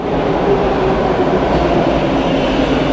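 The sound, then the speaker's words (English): A subway train runs steadily and loudly, its continuous low rumble and rattling roar filling all three seconds with a faint whining tone on top and no voices. “He took a subway downtown”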